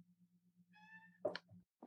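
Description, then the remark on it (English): A single soft, drawn-out cat meow sounds over a steady low hum, followed by a few quiet knocks and clatters; no one speaks. “There's a cat meowing behind you now”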